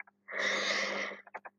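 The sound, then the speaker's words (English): A single harsh, raspy cough lasting about a second, followed by a few short, softer breathy bursts. No one speaks. “Sorry about that cough.”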